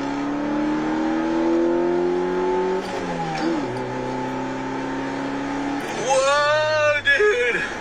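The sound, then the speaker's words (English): A CB7 Honda Accord engine revs hard, its droning tone climbing steadily through the gears before jumping into a sharper, higher-pitched wail as the VTEC kicks in near the end. “Dude, you feel the VTEC, dude. Holy crap, this thing is fast. That's what people don't realize about the CB7s.”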